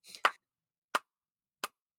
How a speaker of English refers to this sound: He doesn't like that sound. He hates that sound. The clapping sound. Yeah, it goes like this. Oh, baby. I know, but it's the only thing to stop him sometimes. It's a very light clap too. It's not even all that like aggressive.